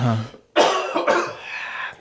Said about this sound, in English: Uh-huh. Mine is always two coughs now. It's a two cougher?